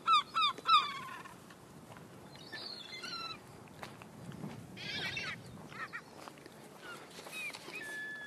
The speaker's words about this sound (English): Yeah, so even, like, that's why there's loads of seagulls. There's a lady feeding seagulls up here. Seagulls! Oh, I don't want to disturb them.